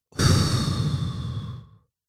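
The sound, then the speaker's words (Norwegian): A single slow, audible, breathy exhale, a meditation breath out, lasting over a second and a half before fading out. No talking over it. “Pust ut.”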